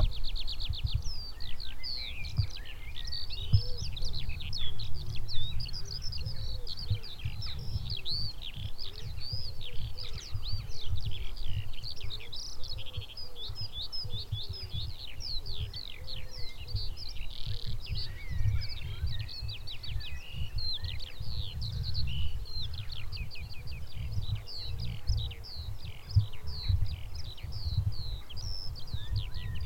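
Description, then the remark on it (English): A red-listed skylark sings a long, unbroken stream of rapid, high chirps and trills for the whole stretch, over a steady low rumble of traffic. “bit of song from Skylark”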